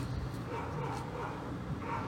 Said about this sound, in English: Do you hear all this dog shit? Hey, stop, man.